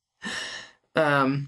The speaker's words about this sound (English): Very tired. He's yawning every 20 seconds right now.